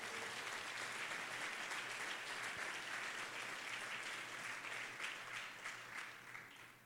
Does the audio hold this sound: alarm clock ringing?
no